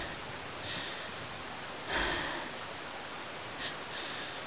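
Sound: heavy rain falling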